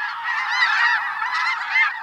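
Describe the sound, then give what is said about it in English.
A large flock of snow and Ross's geese in farmland calling continuously, a dense overlapping chorus of high, nasal honks and yelps at steady loudness, with no talking. “Great flocks of snow and Ross's geese feed in the farmlands.”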